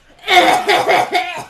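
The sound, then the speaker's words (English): A person coughs several times in quick succession, fairly loud, with a raspy, voiced quality that edges toward a strained chuckle, after being smacked in the chest. “She smacks you in the chest. Oh! You could have warned me. You start coughing.”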